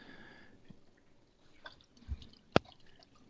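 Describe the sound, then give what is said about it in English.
Salt water brine for a turkey breast being stirred in a bowl until the salt dissolves: faint watery swishes and drips, a soft thump, then one sharp clink of a utensil against the bowl, quiet, with no talking. “Make sure it's all dissolved.”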